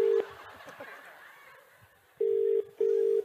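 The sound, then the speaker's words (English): A telephone ringing tone sounds as a steady, fairly loud electronic purr in short paired bursts, with a stretch of murmuring voices and soft laughter filling the gap between rings. “A ringing phone.”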